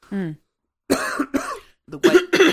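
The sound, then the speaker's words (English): A brief voiced sound, then a run of harsh coughs from a sick person in the UK: two separate hacks followed by a louder, rougher pair, each short and explosive with pauses in between. “Coughing break.”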